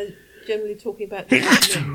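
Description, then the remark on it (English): A man is talking when a single loud sneeze bursts out near the end, a sharp explosive blast that briefly drowns out his voice. “Bless you.”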